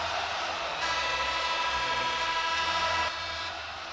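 A full-house arena crowd on Bay Street in Toronto cheers during a Toronto Raptors basketball game against the Hawks, late in the game with the Raptors leading 102-95, in a continuous, dense roar that swells after a moment, holds steady and loud, then eases slightly near the end.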